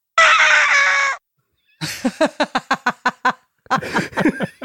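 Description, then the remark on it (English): An oddly pitched vocal sound effect, uploaded incorrectly or pitched differently: a loud, sustained shrill cry, then a quick run of about ten choppy, clucking bursts and a final garbled flurry, with no talking. “But all the vocal sounds that are here were either uploaded incorrectly or pitched differently, and they all sound like this.”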